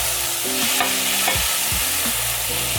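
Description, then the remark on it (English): About half a cup of crushed canned tomatoes sizzle and fry in a hot skillet of spices while a utensil stirs and scrapes through them, a steady hiss with soft rhythmic scraping strokes and no voices. “Right now I'm going to add about 1/2 cup of crushed tomatoes. This is crushed canned tomatoes. This will drop the temperature of the skillet and stop the burning of the spices.”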